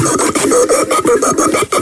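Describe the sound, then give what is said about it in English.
Rapid mouth-made percussion, like beatboxing through straws, with dense rhythmic clicks and pops and a reedy whistling tone weaving through. The short, loud burst stands alone with no talking. “Beatboxing with straws.”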